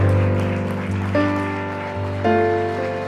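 A church audience claps steadily in a dense, continuous wash of applause as a preacher comes up, with sustained organ chords playing underneath and shifting twice.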